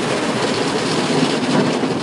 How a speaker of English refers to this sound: Car wash! Can you hear the washing of the car? Can you feel the tiny bubbles? It's scrubbing the car on both sides.